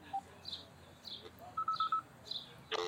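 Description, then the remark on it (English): A phone number being dialed: a run of short electronic touch-tone beeps at a steady, fairly quick pace, moderately loud with no talking, ending in a brief burst of noise. “Go ahead, just dial one more time.”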